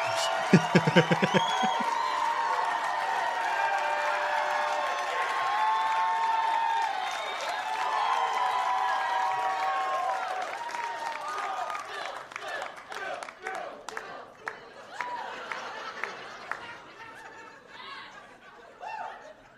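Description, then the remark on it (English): A crowd of about 200 people at a comedy set cheers loudly with overlapping whoops and shouts, chanting the comedian's name, then scattered applause takes over, the clapping gradually thinning and fading toward the end. “Having the people chant my name and stuff like that.”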